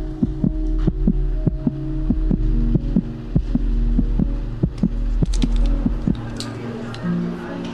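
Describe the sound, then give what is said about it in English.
A man's heartbeat amplified through a heart monitor held facing toward him, its quick, steady thumps repeating throughout over a constant low electronic hum, fairly loud. “They're holding the heart machine, and she has it faced toward him, so you'll hear his heartbeat and what happens next.”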